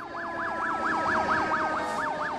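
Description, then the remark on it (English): Emergency sirens wail in the distance in a fast, repeating rise-and-fall yelp, about three cycles a second, holding steady over a low background rumble with no voices. “The last thing she heard was the strain of sirens in the distance.”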